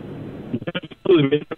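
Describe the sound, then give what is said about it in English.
A caller's voice comes through a thin, narrow-band phone line, choppy and stuttering as the connection breaks up and drops out in short gaps while the caller nears the edge of reception. “He getting close to the out of reception.”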